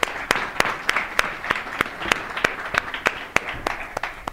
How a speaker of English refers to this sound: So please give Ian Furr a warm round of applause.